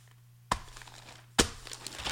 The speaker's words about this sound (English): As I will dramatically flip the pages for a second as you think about what you heard about that.